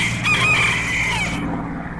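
A chicken lets out a single loud, drawn-out crow lasting about a second, over a steady low hum. The call then trails off, with no voices present.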